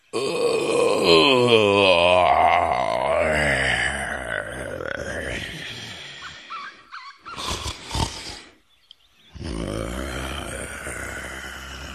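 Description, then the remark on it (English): A lion gives a long, deep groaning yawn with a wavering, sliding pitch, followed by loud raspy snorts and rumbling snoring breaths, with no talking. “The lion yawned, snored noisily, and even started dreaming”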